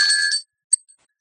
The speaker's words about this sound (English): This is, by the way, this is a little bell from a Thai temple, and it's got like a little, this looks like a Bodhi tree leaf,